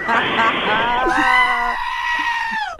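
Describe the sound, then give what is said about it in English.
A person lets out a loud, wavering, goat-like bleat that stretches into a strained scream, one sustained vocal imitation lasting a few seconds and ending abruptly. “Is it … or is it a goat? I can't tell.”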